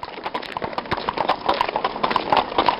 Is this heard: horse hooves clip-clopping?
yes